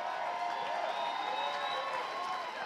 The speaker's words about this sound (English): let's give him one more hand. Come on, clap for him big time.